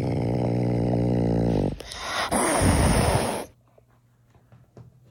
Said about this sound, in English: If you see on my screen right now, this is actually the sound of two cats mating.